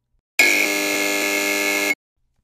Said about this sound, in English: And there's the buzzer. That's all the time we have today, folks.